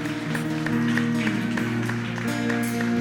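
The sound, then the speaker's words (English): An audience claps steadily as a clap offering to God, a dense wash of many hands layered over sustained, droning keyboard chords that hold throughout at a fairly loud, even level. “Give the clap offerings to our God.”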